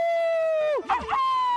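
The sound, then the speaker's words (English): A radio show caller imitates a wolf howl as a "wolf": a long, steady, high-pitched vocal tone that breaks into a brief warbling wobble midway, then settles back into the sustained howl. “I can do my Dickie Wolf.”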